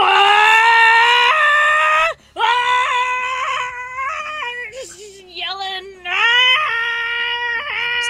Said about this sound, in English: Yelling. Ready to bash. Lung capacity. Yelling. That's amazing. Oh, damn. That's a lot of yelling. See why you need the soundproofing on that room now.